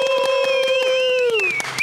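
A short burst of steady clapping, like a round of applause, with a sustained high tone ringing over it that slides downward near the end.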